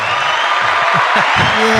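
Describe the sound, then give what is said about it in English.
An applause sound effect played after a listener's call-in: dense, steady clapping from a crowd, loud and continuous for under two seconds, with a few faint whoops and cheers mixed in. “I'm going to do applause every time someone calls.”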